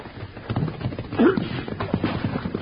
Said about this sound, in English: let's get to the horses and ride. Yeah, let's get up.